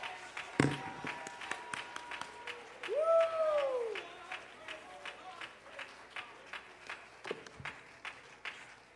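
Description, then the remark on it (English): An audience claps in a steady, even rhythm for several seconds, sharp repeated hand claps over a low murmur, with a brief rising and falling vocal whoop partway through. “Oh, somebody, would you clap?”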